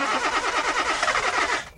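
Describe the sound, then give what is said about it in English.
A car engine cranks with the ignition key at night in Colorado, a loud, rapid rhythmic churning of the starter that runs for under two seconds and cuts off without the engine catching. “I gleefully inserted my keys into the ignition and cranked the engine.”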